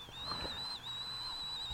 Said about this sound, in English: As you hear his cup whistling into the mic, he's just smacking his lips. That's the ASMR for you people.